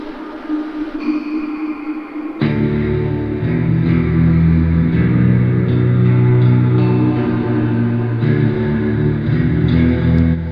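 NXT wrestling theme music from NXT Takeover Brooklyn 3: a quieter intro swells into a loud, dense wall of sustained distorted tones and bass that drives steadily to the end, with no voices.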